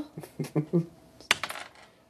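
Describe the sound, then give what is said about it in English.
Dice clatter and tumble across a hard surface during a tabletop game, a quick series of bright clicks followed by a sharper burst of rattling taps that settle quickly, fairly loud. “We're going to switch dice.”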